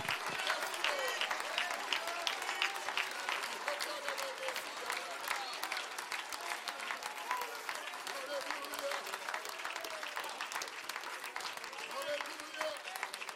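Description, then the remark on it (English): An audience claps its hands during worship in a dense, steady burst of applause that keeps up evenly for the whole stretch, with faint voices mingling underneath. “Whether you got rhythm or not, maybe wave your hands, clap your hands, lift your voice.”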